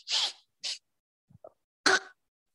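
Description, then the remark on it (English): Someone sniffs a yellow glob of a substance: a few sharp, breathy sniffs through the nose, one long and one short, then a brief soft pause and a final loud sniff with a slight voiced edge. No talking. “I have a feeling that if I sniff this enough, hold on.”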